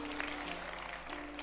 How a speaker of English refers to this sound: Oh yeah, clap for your wedding.